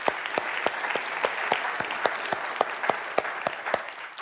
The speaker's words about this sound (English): Yeah, go ahead and applaud that. I think that's wonderful.